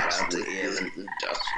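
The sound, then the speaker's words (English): A person croaks like a toad, a raspy, throaty call in two stretches with a brief dip between, loud and filling the short moment on its own. “Great job with this toad, man.”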